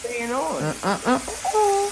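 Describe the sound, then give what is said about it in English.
Steady crackling hiss of bacon sizzling in a pan runs through the whole clip, partly covered by a voice speaking in rising, sing-song tones. “Baby girl, I think you might have heard me through the bacon crickling and crackling.”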